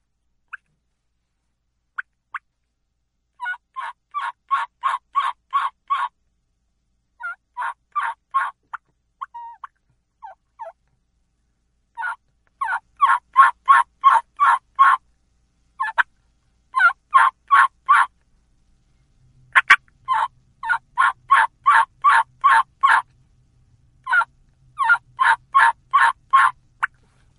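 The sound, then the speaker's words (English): A turkey hen yelp made on a mouth call, repeated in steady series of sharp, raspy notes with short pauses between runs, loud with no talking. “So here is how I do a hen yelp with a mouth call.”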